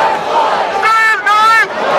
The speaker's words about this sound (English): George Floyd's sister overcome with emotion as the crowd chanted his name.